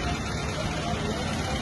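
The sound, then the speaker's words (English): A cement truck's engine idles outdoors, with concrete pumping trucks present, a steady low rumble with a broad wash of mechanical noise that holds at an even level throughout the short stretch. “We got cement trucks right off the bat. Concrete pumping trucks.”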